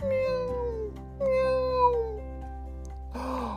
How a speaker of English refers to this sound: Meow, meow. Oh no, I don't think she can get down from there.